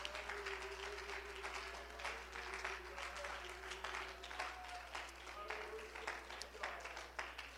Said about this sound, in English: Can you clap your hands once again as you be seated? Hallelujah.